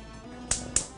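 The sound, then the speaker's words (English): A spoon taps and presses into soft canned beans cooking in a saucepan, mashing them to a smooth texture, making three sharp, evenly spaced knocks over a quiet background hum, with no talking. “so as I'm doing this, I can also just use a spoon to sort of mush the beans.”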